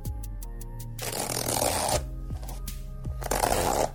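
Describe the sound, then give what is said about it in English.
A zipper on an outfit is pulled up in two long, rasping strokes as someone is zipped into it, with a few quick clicks before and a low steady hum underneath. “Will you zip me into this fucker?”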